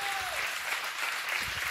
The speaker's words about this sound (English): Don't clap too hard.